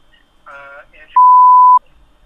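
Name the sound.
censor bleep tone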